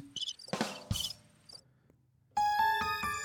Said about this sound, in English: the crickets. Crickets.